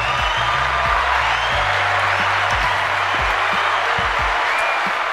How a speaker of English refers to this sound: They had to, listen, the way that they packaged this nonsense, man, you got to give them a round of applause. Round of applause.